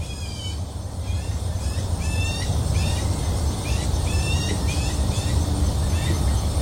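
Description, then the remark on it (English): An odd, weird-sounding buzzy bird call, heard from a porch, repeats roughly every second in a series of short raspy phrases, fairly clear over a steady low outdoor rumble like traffic or wind. “That is a weird sounding bird.”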